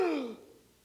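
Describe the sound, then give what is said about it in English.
A single dramatic gasp made by one voice, a short breathy 'oh' that falls in pitch and fades within half a second, fairly clear, with no other sounds. “They all gasp.”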